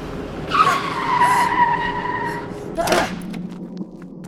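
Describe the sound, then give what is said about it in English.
A car going too fast skids out of control with a loud, drawn-out tire squeal lasting about two seconds, ending in a sharp thud of impact and some rumbling noise afterward. “We're going too fast. I can't steer it.”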